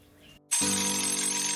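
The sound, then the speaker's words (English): An alarm clock going off at 6:30 a.m. bursts into a loud, continuous ring after a brief hush, a bright, buzzy electronic tone holding steady with layered pitched harmonics until the end. “I woke up to the sound of my alarm at 6:30 a.m.”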